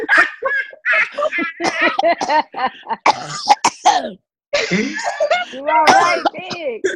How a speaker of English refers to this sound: Hey, audience, just so you all are clear, this is what tribe does, okay? Tribe does the cough thing, okay?